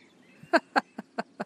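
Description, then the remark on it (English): A bird gives a quick run of five sharp, evenly spaced chirps, clear, with no talking and only a faint background hush between calls. “I think the birds like this prayer.”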